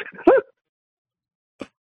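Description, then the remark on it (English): A dog named Freya gives a quick, strained yelping bark, then after a silent pause lets out one shorter, softer yip. “I don't have a bark command, but Freya's going nuts now”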